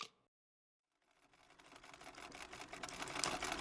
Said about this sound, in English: Wetzel returned to his sewing machine in the attic.